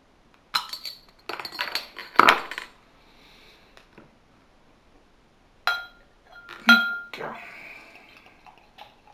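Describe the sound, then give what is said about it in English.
A black beer bottle with a black label and black cap is uncapped with a bottle opener, giving a few sharp metallic clinks and glassy knocks, then the opaque black beer pours into a glass near the end, partly missing the glass, with no talking. “Right, let's get this cap off and see what I think of this.”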